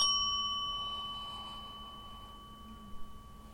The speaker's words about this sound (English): And you can hear the bell.